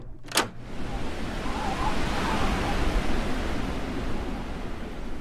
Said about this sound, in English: Looks like it was just the wind.